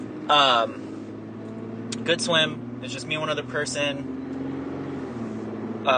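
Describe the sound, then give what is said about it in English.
A steady low engine hum and road rumble from inside a moving car heading home from a pool and pulling out into traffic, its windows fogging up, continuous throughout, with a person talking casually over it. “And now I gotta cut out in traffic.”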